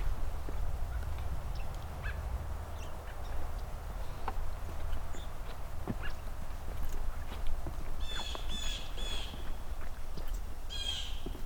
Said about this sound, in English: Blue jay. This time of year, blue jays are actually pretty loud, usually, from my experience. It's because some of them are migrating.